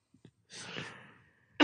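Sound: coughing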